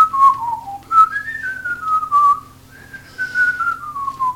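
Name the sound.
person whistling a tune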